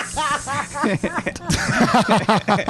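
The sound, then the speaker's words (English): A man's voice does a hissing impression of a garden snake, drawn-out breathy hisses blended with voiced, chuckling sounds, fairly loud for a few seconds. “I'm just a regular snake.”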